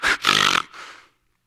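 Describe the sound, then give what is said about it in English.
A person imitates a horse snorting: a short sharp puff, then a longer rough, buzzing snort that trails off into a breathy exhale, heard on its own. “And that word that's translated indignation in our King James Bible, it was a word that was used in that hour to describe the snorting of a horse.”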